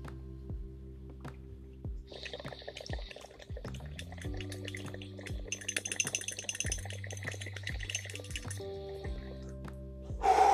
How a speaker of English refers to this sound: Cheers, I'm gonna go ahead and take this dab.